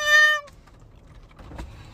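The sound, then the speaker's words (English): A person gives one short, loud, high-pitched meow in imitation of a cat, steady and nasal for about half a second, followed by quiet background rumble and faint shuffling. “You sound like a fucking cat.”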